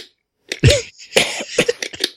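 A loud cough followed by a few shorter, raspy coughs and throat-clearing bursts in quick succession, with no talking.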